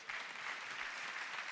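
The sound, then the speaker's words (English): A crowd claps steadily, a dense, continuous patter of many hands applauding at moderate volume, filling the whole moment with no voices standing out. “And y'all can clap for that.”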